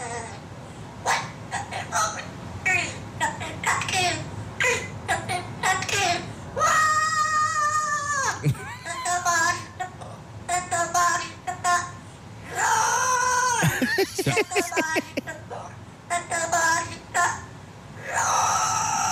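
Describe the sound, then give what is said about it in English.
A bird sings a mimicked tune over and over, loud, mixing quick chirps with long, wavering, almost meow-like tones; no one talks. “I thought there was a bird that already did this.”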